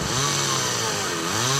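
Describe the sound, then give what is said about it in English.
A chainsaw engine runs loud, its buzzing whine holding steady and then revving up and down slightly over a second and a half, with no talking. “You wouldn't operate a chainsaw blindfolded.”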